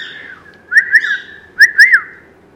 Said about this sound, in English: You see, he wolf whistles, which is so funny, but he's not going to do it now.